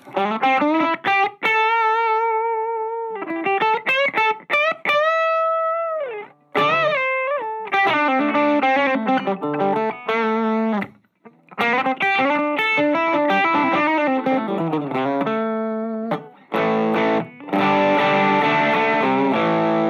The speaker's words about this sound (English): And then the back pickup for that lead stuff is really awesome. So I'm gonna throw in a little bit of distortion here from the Route 66.